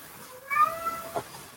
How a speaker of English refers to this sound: cat agrees with me. My cat is upset at people thinking the earth's flat and the sun.